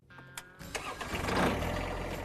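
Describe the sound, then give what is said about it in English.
A tractor engine cranks over and catches, then settles into a steady, rumbling idle that grows slightly louder, with no talking. “Start your tractor buying process off-right at Meat Tractor.”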